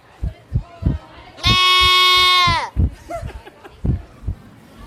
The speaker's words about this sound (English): I have a friend who loves to go out to the fair and see the goats. And so I told her, I said, I'm going to interview a goat just for you. And I did just that. And take a listen.